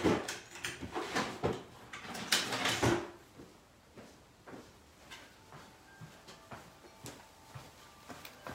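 Rummaging through a drawer of old tech while searching for an old mobile phone: objects clatter and knock about, loud and busy at first, then settling into scattered, quieter clicks and shuffles. No one speaks.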